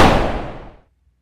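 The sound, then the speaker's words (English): A loud, sharp burst of gunfire, three shots fired at Santa, hits at once and decays over under a second into silence. The blast blurs together rather than showing clearly separate shots. “The Hunter shoots 3 more bullets into Santa's bowl full of jelly.”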